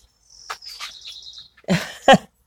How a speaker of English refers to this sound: And that's the wren making all that noise.